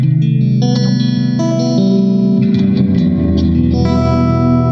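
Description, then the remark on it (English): A loud, sustained electronic tone smeared by heavy repeating delay with high feedback, with echoes piling up into a dense, reverberant wash of layered harmonics that shift and swell over several seconds. “The feedback. It's almost like it kind of reverbs off everywhere, bounces everywhere, doesn't it?”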